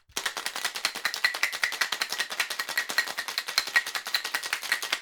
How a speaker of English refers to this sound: add some ice, and then put 1 ounce of Irish whiskey. And 1 ounce of butterscotch schnapps. Put the lid on the shaker and give it a good shake.